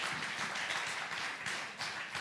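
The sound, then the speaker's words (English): A crowd claps together to give the Lord a hand, a dense, steady wash of applause that carries on throughout, with no voices breaking through, at a fairly soft level. “Let's give the Lord a hand, a clap.”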